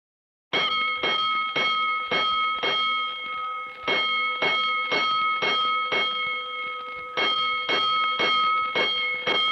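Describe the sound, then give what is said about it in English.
A fire station alarm bell clangs loudly and rapidly, struck over and over in bright, ringing bursts with brief pauses between groups, with no voices. It rings five bells to signal a five-alarm fire. “Attention, all districts. A five-alarm fire. Five bells.”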